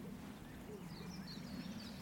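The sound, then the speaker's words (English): A mistle thrush sings faintly in the background, a few short fluty phrases drifting over a steady low rumble of wind or engine noise. “And that sad song in the background. So listen to me. Missel thrush.”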